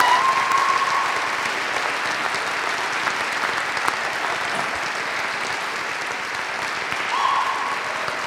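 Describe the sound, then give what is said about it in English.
An audience claps steadily for several seconds for the negative team at the end of a debate, a dense, even wash of many hands with no voices on top, holding at a fairly constant loudness throughout. “And those who believe that the negative team were victorious in this debate, please give them a round of applause.”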